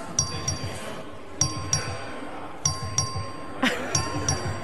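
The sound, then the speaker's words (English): A legislative voting bell, rung by the clerk for a recorded vote on an amendment, rings in a steady pattern of paired, bright metallic dings, four pairs over a few seconds, each tone ringing briefly against a faint room murmur. “The clerk will ring the bell.”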